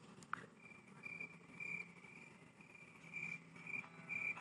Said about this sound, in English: Last chance. Where's my cricket sound? I can't find it.